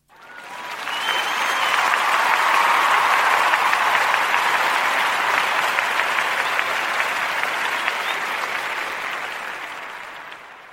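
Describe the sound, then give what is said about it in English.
Sustained applause from a large crowd, dense clapping mixed with cheering that swells quickly, holds loud and steady for several seconds, then slowly tapers near the end. “Should I do cheering?”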